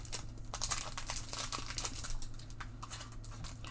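Crinkly plastic wrapper of a Pokémon trading card booster pack (Silver Tempest and Scarlet & Violet) being handled and opened, a steady run of sharp, bright rustles and crackles over a low constant hum, with no talking.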